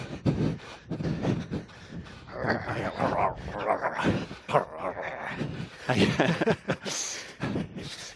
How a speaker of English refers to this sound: By the way, that was little dogs.